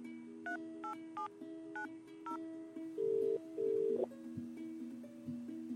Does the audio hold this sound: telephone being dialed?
yes